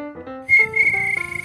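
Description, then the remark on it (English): A person whistles in imitation of a cricket's chirp: a few stepping tones, then a shrill, high sustained whistle that breaks into quick pulsing trills. No one talks. “Between your silk sniffing and your cricket whistling.”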